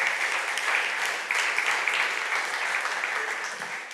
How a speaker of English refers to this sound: Thank you, guys. So why don't we give everybody a round of applause that helped out? Yeah.